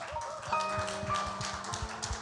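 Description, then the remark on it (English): Light, polite golf-style applause at a church service, welcoming the morning's preacher: a small scattering of soft, irregular claps pattering along steadily for a couple of seconds, fairly quiet, with no voices. “Yeah, I think that feels about appropriate for probably what he's going to do, that kind of half golf applause.”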